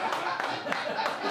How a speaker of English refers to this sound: Thanks, applause.